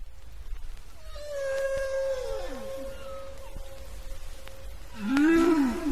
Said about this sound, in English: What else do we have? A two-sided flexible sheet recording of the songs of humpback whales.